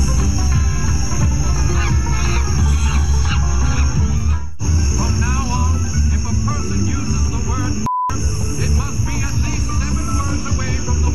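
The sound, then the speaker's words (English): A neighbor in Virginia Beach imitates monkey noises to racially harass a family, loud, with a steady run of whooping, hooting calls over a dense, noisy background that briefly drops out partway through. “Whenever we would step out of our house, the monkey noises would start.”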